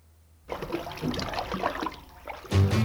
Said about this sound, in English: Splish splash, I was taking a bath, long about a Saturday night. Yeah. Rub dub, just relaxing in the tub, thinking everything was alright.